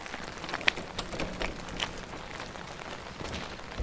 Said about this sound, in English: At least the rain's good for something. They may not hear us.